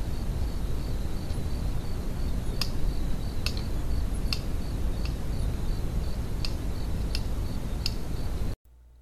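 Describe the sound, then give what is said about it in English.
Sharp, sparse clicks from an eland, about eight of them at irregular intervals, standing out faintly over a steady hiss of background noise, with no voices. “But let's go ahead and listen to the sounds of an eland.”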